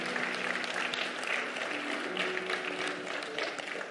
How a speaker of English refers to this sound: Come on, give our prayer team members a hand clap of praise. Woo!